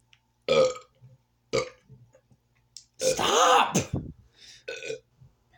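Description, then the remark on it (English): A string of loud burps after drinking soda, short gulping ones first, then a long drawn-out belch and a few more after it. Someone briefly shouts a word between them. “Like, this is just for me drinking soda”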